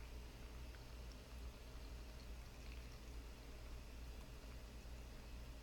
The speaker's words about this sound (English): And how the leaves dance and move around in the bowl as we add the water. And just add as much as you feel that you need. It may not be a full bowl of tea, just something that feels like a good cup to start with.